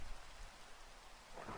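Steady, dense rain hisses across the whole clip while a low thunder rumble rolls underneath, swelling slightly near the end. No voices, just the continuous storm.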